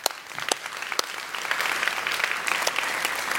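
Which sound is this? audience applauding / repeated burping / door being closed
audience applauding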